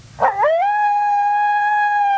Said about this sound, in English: We're not out in the middle of no place. We just got the coyotes out here.